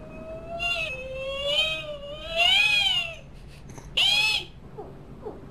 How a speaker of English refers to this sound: Here we go. Is it a biologic? Sounds like a whale.